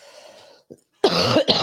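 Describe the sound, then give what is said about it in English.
A deep, chesty cough rings out loud, two harsh bursts in quick succession after a brief soft breath, with no talking. “I still have this nasty cough.”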